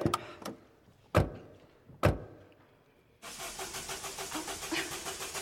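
A few sharp thuds like car doors closing, then a starter motor grinds in a steady rhythmic whir as a car engine cranks repeatedly without catching, fairly loud.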